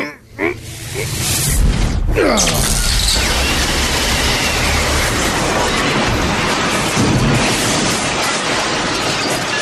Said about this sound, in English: At that, Sun King's belt begins to glow with its ultimate power, and suddenly from its center releases a giant bolt of pure solar energy directed at the collection of taxicab vehicles.